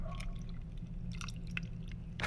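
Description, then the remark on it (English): Whiskey poured into a glass, a few soft gurgling splashes and wet glugs over a low steady hum, with no talking. “We're going to do a little ASMR pour here.”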